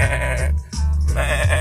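A sheep bleats twice in quick succession, loud and close, each call a wavering, nasal baa with a brief break between them and no other sounds around.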